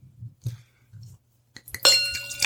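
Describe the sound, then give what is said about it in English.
A few soft low knocks and shuffles, then a bright ringing clink of glass near the end as an empty big glass is handed over, its tone lingering briefly as another light tap follows. “Can you pass me your empty big glass?”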